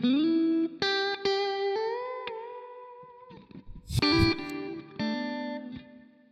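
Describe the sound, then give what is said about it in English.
Clean electric guitar notes and chords ring out with lush reverb, played through a Super Reverb amp, sustained tones blooming and decaying over several seconds, played alone with no voices. “Super reverb right now. Like, that's the sound.”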